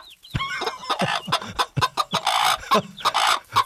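A flock of chickens clucking busily, with rapid overlapping squawks and cackles in quick, irregular bursts, loud, with no talking.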